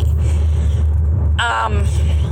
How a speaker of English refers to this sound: I'm actually on the road and recording in the car, so that's why you hear a little bit of background noise.